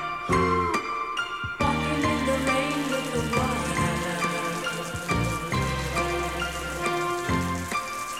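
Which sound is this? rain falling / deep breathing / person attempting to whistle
rain falling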